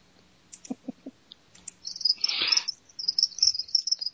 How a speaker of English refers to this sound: Did you hear the crickets?